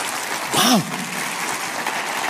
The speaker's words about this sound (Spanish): Pues darles aplauso grande al Señor, ¿no?